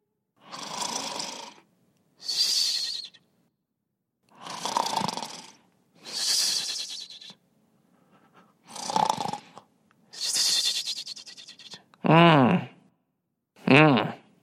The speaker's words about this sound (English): I hear someone snoring. It must be the wind asleep.